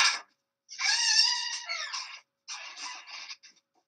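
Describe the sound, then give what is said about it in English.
A squeaky door in need of oil creaks in a high, whiny, wavering squeal: a short squeak, then a long drawn-out one, then another shorter groan, fairly loud with no one talking. “This guy needs to oil his door, doesn't he?”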